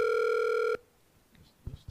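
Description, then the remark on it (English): A phone's outgoing ringing tone sounds for about three quarters of a second, a loud, steady electronic buzz, then cuts off into near silence with a few faint thumps at the end. “I feel like I'm in jail, like, waiting for mama to pick up the phone.”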